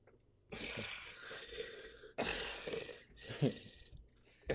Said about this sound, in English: We'll bring the mic closer for some ASMR. No, it's terrible. Oh, such a great way to start off. I'm going to do a whole ASMR series of just mouth breathing.